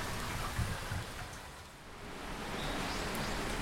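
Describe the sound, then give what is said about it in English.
Steady outdoor typhoon rain with gusting wind at 10:30 in the morning, a dense continuous hiss with low rumbling buffets that dip briefly midway before swelling back. No one speaks. “The rain has actually calmed down a bit, but it seems like things are about to get pretty bad.”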